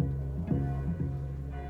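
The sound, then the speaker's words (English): A church bell peals late at night, its struck tones sounding in close succession and ringing on over a low, sustained hum. “And then, despite the late hour, the church bell begins to peal, and there's the sound of a swelling throng of people outside the house.”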